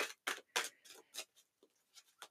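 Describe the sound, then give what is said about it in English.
A Game of Thrones deck of cards being shuffled: a series of crisp, papery bursts in an uneven rhythm, loud at first and then growing softer and sparser, with no voices. “Just finishing up shuffling with my Game of Thrones deck.”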